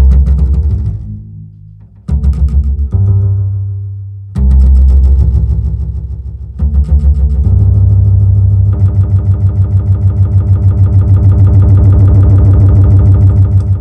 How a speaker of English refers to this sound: Can Pro Tools also do cool feedback loops? The answer is yes. Both audio and aux tracks can have a certain bus as its input and send to that same bus. This allows us to do wacky retro stuff like this.